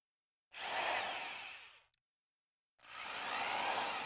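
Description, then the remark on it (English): A power drill whirs loudly in two sustained bursts, the first about a second and a half long, a brief pause, then it starts up again and keeps running. “The drill's ready.”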